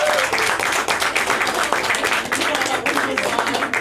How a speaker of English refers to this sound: How about a round of applause from the state champion Clinton High School girls hockey team for your coaches